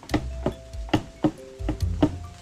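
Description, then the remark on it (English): A telephone hook is pressed and released in a steady, deliberate rhythm to signal the telephone operator, giving about six sharp clicks spaced roughly a third of a second apart, each with a faint ringing tone behind it. “When it's necessary to signal the operator, do it this way. A definite rhythm.”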